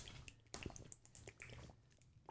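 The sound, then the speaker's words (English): Quiet liquid sounds of a water bottle being handled: soft sloshing and gurgling with small dripping blips and a few crinkly knocks, all without any talking. “That's a water bottle.”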